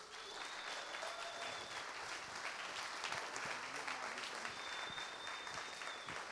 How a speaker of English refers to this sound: I want you to give him a big hand.